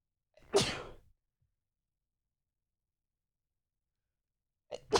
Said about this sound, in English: sometimes doesn't a sneeze just feel so flipping good? Like, you get, like, a really good sneeze where you, like, get the wind up where you're like, wham!